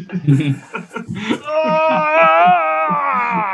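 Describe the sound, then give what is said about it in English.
After a second or so of brief vocal sounds, a man voicing a character lets out a long, loud, strained scream that wavers and climbs in pitch for about two seconds as the character strains to lift Earth. “And Norman screams.”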